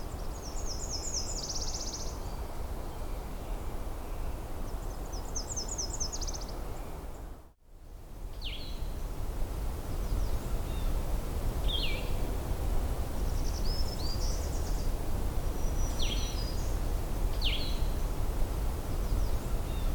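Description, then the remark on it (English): A Nashville warbler sings two high, rapid trilled phrases over a steady hiss of background noise, followed by a few scattered short, sharp chip notes. “This recording was of a Nashville warbler.”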